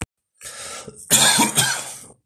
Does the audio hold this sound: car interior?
no